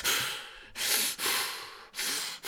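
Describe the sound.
A person imitates the heavy, angry mouth breathing of the character Dino: four harsh, hissing breaths in quick succession, fairly loud, with no talking.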